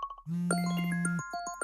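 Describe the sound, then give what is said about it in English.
A phone rings with electronic tones: a few quick beeps, then a sustained buzzy tone layered with overlapping chimes and pings, fairly loud, with no one speaking. “Suddenly, the phone started ringing and it didn't stop.”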